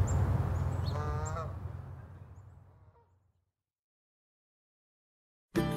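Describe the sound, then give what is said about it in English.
Birds call outdoors in Sapsucker Woods over a rushing wash of ambient noise, with a honking cry standing out near the start before everything fades into silence; an abrupt, unrelated sound cuts in at the very end. “We went back out to Sapsucker Woods to listen to the birds, then back to our hotel.”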